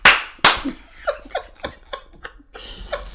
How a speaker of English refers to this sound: You know, I'll give you a round of applause. Round of applause.